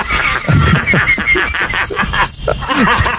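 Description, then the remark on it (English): A cricket chirps in quick, steady pulses, a shrill, repeating trill that continues throughout, with faint murmuring voices underneath. “How do crickets make this sound, first of all?”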